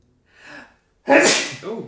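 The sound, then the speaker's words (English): A sharp intake of breath, then one loud, explosive sneeze, trailing off into a brief voiced exhale. “I'm gonna sneeze.”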